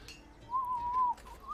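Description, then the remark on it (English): A person makes a steady, mid-pitched whistled tone, imitating an Aztec death whistle, for about half a second, then a shorter wavering note. Moderately loud, with no talking. “I imagine it's kind of like the Aztec like death whistle.”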